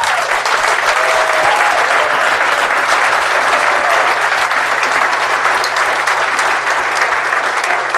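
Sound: audience round of applause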